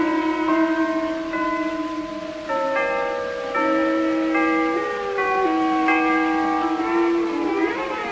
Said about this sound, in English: Hold on, boys, the chimes are going to play.